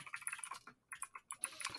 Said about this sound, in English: All right, so like I said, I can hear someone's keyboard very loudly. Sorry, my bad.